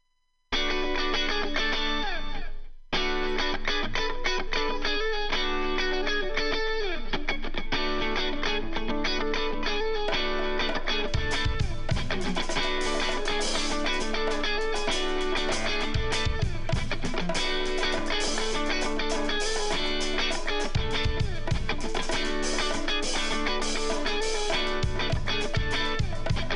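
A guest musician's original song plays with dense, effects-heavy guitar tones and no talking; it pauses briefly near the start, then grows fuller and louder as heavy drum hits join partway through.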